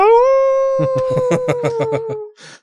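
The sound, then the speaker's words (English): A dog howls in one long, loud note that rises and then holds steady, introducing a show's News Hound segment, while about eight quick, rhythmic bark-like pulses sound beneath it. A short noisy burst follows at the end. “News Hound? News Hound!”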